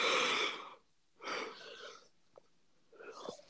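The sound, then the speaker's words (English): A breathy yawn: a long drawn-in breath followed by a slower airy exhale, then a softer trailing breath, with no talking. “Did you yawn? Did I make you yawn? Yeah, I literally just yawned.”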